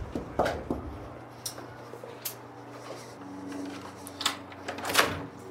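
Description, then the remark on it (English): Scattered knocks on a front door by a 48 Hours CBS News crew ring out at uneven intervals over a steady low electrical hum, with no one speaking. “But that's something she didn't want to share with us when 48 Hours knocked on her door.”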